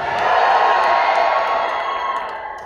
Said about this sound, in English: Wait, who is here by sound of hooting? Who is in the at the parade route?